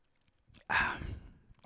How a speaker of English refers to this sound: Speaking of drinking, I'm going to have a little sip of wine right now.